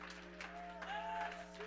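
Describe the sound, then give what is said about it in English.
A church audience claps and shouts in praise in a low, steady crowd wash, with a few sharper bursts standing out over sustained organ-like tones underneath. “Oh, somebody clap your hands. Somebody shout.”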